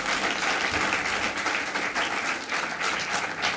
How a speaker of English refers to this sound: And everybody said, amen and amen. Give the Lord a big hand clap, would you? Praise the Lord.